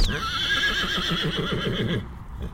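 A horse whinnies loudly, one long, quavering neigh that trembles rapidly in pitch for about two seconds before breaking off, with no one speaking.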